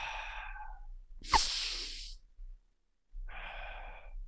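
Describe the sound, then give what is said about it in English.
Three forceful, noisy breaths drawn in, each about a second long with brief pauses between, the middle one sharpest and loudest; no talking. “So you sharp breaths in, your heart rate should jump up.”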